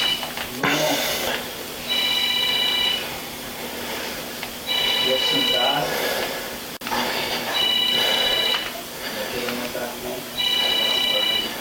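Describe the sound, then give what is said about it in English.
A telephone rings in repeated bursts, a trilling electronic ring roughly every three seconds, loud over a steady background hum. “can you answer the phone?”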